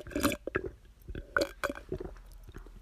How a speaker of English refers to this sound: I really wanted you to get that gulping sound. It was a good one, some ASMR Yeah. for the folks at home.